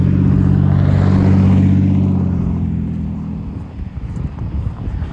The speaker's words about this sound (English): I'm trying to toy with these cars. These people in cars, but they're going so fast.